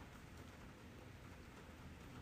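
Steady rain pours down in a dense, continuous hiss with fine pattering detail, fairly loud, with no voices and a faint low rumble underneath, in San Francisco, California.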